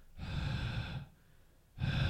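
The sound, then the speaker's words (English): A person imitates the heavy, menacing breathing of a figure standing there stalking someone: a long, rough inhale-exhale, a brief pause, then another loud breath starting. No talking. “It would just be standing there breathing like this.”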